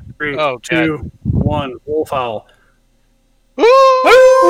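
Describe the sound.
A few short vocal bursts, then a pause, then a loud, sustained wolf howl, a human voice imitating it, held at a steady pitch.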